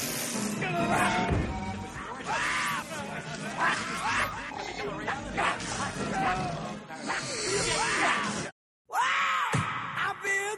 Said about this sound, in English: So, and that just seems like a lazy Foley artist. Yep. Like, we need a scream. Oh, I got this CD here. That's good enough. I'm sick of putting in Wilhelm screams. Yeah, exactly.